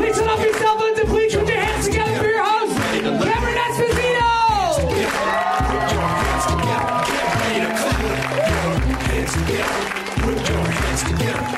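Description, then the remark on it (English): An audience at the New York TV show claps steadily and loudly for the whole stretch, with scattered cheers and whoops mixed in over a driving musical beat. “You clapped great.”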